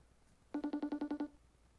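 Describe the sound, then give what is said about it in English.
A FaceTime audio call ringing on a phone: a quick burst of about eight rapid electronic tone pulses, clear, lasting under a second against a quiet background. “I'm going to try calling Sarah again. FaceTime audio.”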